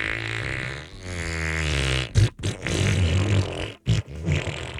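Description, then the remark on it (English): A voice imitates a long fart from the bloopers of a show on Hulu, starting with a sustained buzzing tone for about two seconds and then breaking into rougher, sputtering bursts with brief gaps, loud. “And she's like, oh my gosh, I've got a fart. And he just went.”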